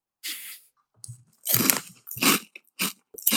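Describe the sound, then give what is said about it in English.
Crunching on a crispy pizza-flavored snack, a series of sharp, crackly bites and chews in an uneven rhythm, with short pauses between them and no talking. “And crunchy.”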